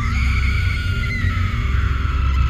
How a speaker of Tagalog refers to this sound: Alas 10 ng gabi sa pang-anim na araw na pananatili namin sa lugar na yon. Nagulat kaming lahat dahil sa sigaw ng isang babae.